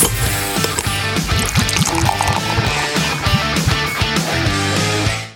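Beer pours into a glass in a steady, gurgling stream, fairly loud, running for several seconds before tapering off at the end. No one speaks.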